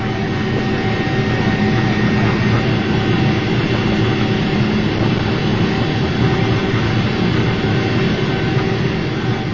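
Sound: airplane engine sound effect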